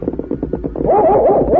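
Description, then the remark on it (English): The Norris dog, out on a cattle range, lets out a quick string of rough barks, then breaks into a loud, wavering whimper that rises and falls until the end. “That Norris dog is at it again.”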